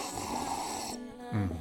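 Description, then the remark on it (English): A long, airy slurp of someone sipping MicroBoost functional mushroom coffee, lasting about a second, followed by a brief low, voiced exhale or satisfied hum. No talking. “You hear that? That's me sipping MicroBoost functional mushroom coffee.”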